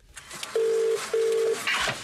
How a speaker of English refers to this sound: So, that was yesterday when I called him. He set off the house alarm. It went for over 30 minutes.